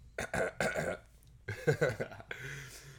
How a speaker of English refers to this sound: Ooh. Hear that throat. You heard it. Let me clear my throat.